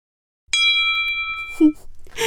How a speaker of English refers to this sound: All right, so that little bell is our fact checker bell.